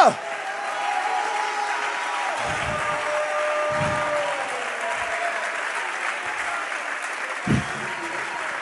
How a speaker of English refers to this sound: Somebody clap your hands if you want something from God right now. I want you to clap like you can receive it right now. I want you to shout like you can receive it right now.